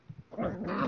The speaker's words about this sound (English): Oh, that's a big bark.